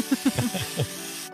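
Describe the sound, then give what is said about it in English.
A steady aerosol spray of SPF 50 sunscreen hisses for just over a second, then cuts off abruptly, with several short voiced vocal sounds layered over it. “Tosses you the 50 spray.”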